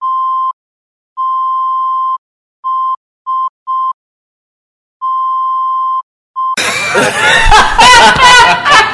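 A string of loud, steady censor bleeps, some long and some short, cut in and out with silent gaps, then an outburst of laughter takes over near the end.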